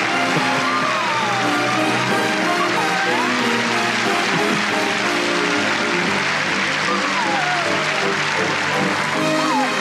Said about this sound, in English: But right now what we're opening on is the camera has gone into the auditorium, and now we're focusing on the stage, which is festooned with dancing stars. And a tepidly applauding audience.